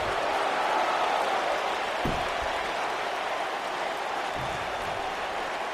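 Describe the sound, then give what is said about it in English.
A large wrestling crowd roars and cheers during a match between Batista and X-Pac, in a steady, dense wash of noise that holds at an even loudness throughout, with no clear voices standing out. “And the crowd is starting hard to get into it.”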